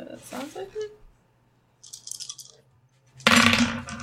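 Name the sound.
dice rolling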